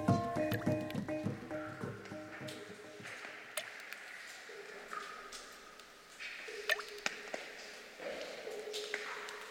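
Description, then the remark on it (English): Water drips steadily into still pools in a cave, each drop a sharp plink with a ringing, resonant tail, overlapping into an irregular echoing chorus; recorded by Jean-Luc Harel. “It's the resonant chorus of water dripping into pools in a cave, recorded by Jean-Luc Harel.”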